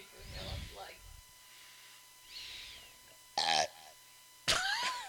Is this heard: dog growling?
no